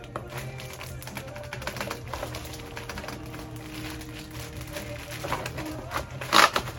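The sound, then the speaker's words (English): Rustling and light clicks as a computer keyboard is unpacked from its box and handled over a steady low hum, ending in a brief louder clatter near the end. “So, here's the keyboard.”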